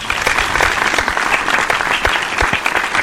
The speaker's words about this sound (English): I think we should all, and I'm sure you have a round of applause thing. We should all give a big round of applause to Melissa Villaseñor.